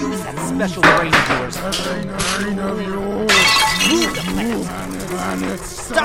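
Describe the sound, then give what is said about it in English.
A loud crash of something slamming into a wall, with a bright shattering burst midway and debris rattling after, all under strained, wordless vocal sounds. “The object smashed into the wall.”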